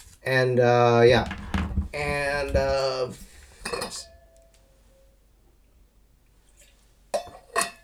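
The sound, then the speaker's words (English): Someone drinks water from a glass: a few sharp glassy clinks and knocks, separated by quiet pauses, come after a stretch of wordless voiced sound at the start. “Sorry, I always have to, like, drink my water because I like to talk so much.”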